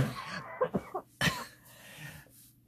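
A person coughs in a few sharp bursts, followed by a louder single cough, with quiet room tone in between and no speech.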